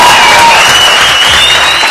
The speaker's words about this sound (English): Right, exactly. I'll give you the clap on that one.